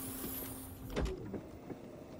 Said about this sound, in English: Right this way through these cool science doors. Doors open. Doors closed.